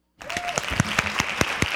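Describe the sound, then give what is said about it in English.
Audience applause starts abruptly and carries on as a dense, steady wash of hand claps, with a few sharper individual claps standing out at an uneven rhythm. “I appreciate the hand claps.”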